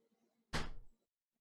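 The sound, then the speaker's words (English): A rear door on the port side is shut once with a single loud thud and a brief rattle that fades within half a second, following a faint low hum. No voices are heard. “Well, I'll just go to the first door closest to me, the one in the rear on the, what is that, the port side.”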